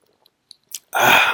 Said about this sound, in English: Here. Let me drink some coffee.